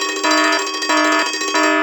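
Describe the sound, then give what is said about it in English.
A loud electronic alarm sound effect rings out alone, bright tones pulsing in rapid repeated bursts roughly every third of a second for a couple of seconds. “Definitely minutia alarm, calling it on myself.”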